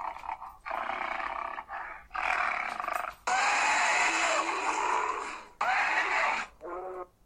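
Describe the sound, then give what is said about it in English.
A video game dinosaur lets out a series of loud, harsh shrieking roars in about five bursts separated by short pauses, the longest one a raspy wail, with no talking. “they had these ungodly shrieks like banshees in Jurassic Park Operation Genesis”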